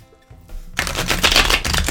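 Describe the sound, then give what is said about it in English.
A deck of cards being shuffled, a quiet start followed by a dense, crisp burst of rapid riffling flutter lasting over a second, loud and clear with no voices. “They shuffle very nicely. I love the cardstock on this card, on this deck.”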